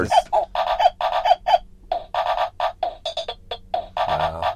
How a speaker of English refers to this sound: That's the chicken. That's the chicken? It says cock.